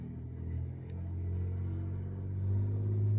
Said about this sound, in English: Very loud car zooming past. I wanted to kick right into the song, but it's a crazy loud car. Okay, and I think they're gone.